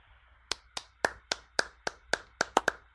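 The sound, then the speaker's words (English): A quiet golf clap: about ten soft, crisp hand claps at a slow, steady pace, slightly quickening near the end, with no voices over them. “I was given the golf clap before anyone.”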